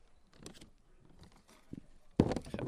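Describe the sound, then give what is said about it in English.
A sheet of paper rustles and crinkles in a few soft, scraping bursts, ending with a louder, sharper flip as it turns over. “Sorry, I just flipped my paper over.”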